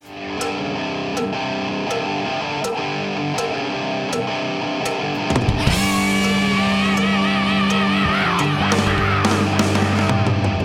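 A distorted rock guitar riff opens over a steady, evenly spaced cowbell beat, then a loud, sustained vocal scream with wavering pitch bursts in about halfway through as the band crashes in.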